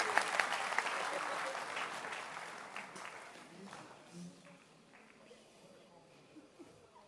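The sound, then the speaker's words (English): An audience claps, starting as dense, loud applause that gradually thins and fades over several seconds, with some murmuring voices underneath as it dies down. “Can you clap your hands and please be seated?”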